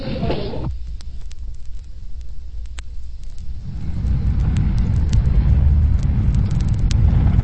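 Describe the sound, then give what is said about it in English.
A car drives along while its occupants look for a man, with a steady, low engine and road rumble that grows heavier partway through, with faint ticks and rattles over the drone and no talking. “Stop the car”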